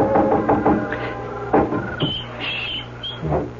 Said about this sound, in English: knocking at Polly's window gently